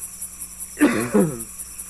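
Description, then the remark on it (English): Someone coughs twice in quick succession while a steady high-pitched insect chirring continues throughout. “You can hear somebody in the back road coughing.”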